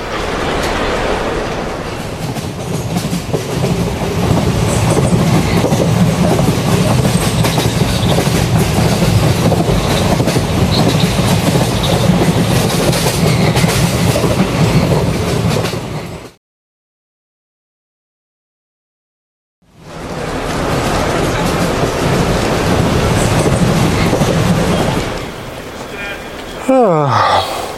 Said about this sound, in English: Can't beat 6 hours on a train.